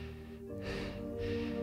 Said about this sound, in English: And he's breathing hard.